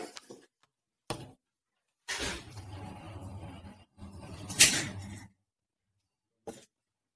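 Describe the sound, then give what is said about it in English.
A door is pulled shut, with a few short knocks, a longer stretch of rustling and scraping, then a final soft thump. No one speaks. “Let me shut the door.”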